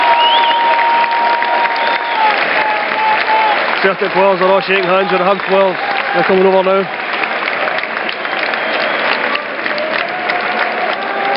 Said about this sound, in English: The Celtic players now applaud us.